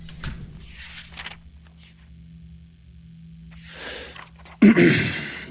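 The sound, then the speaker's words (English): A guard pushes a door shut with a single firm thud near the end, following a few seconds of soft shuffling and movement. “Guard, could you shut that door, please?”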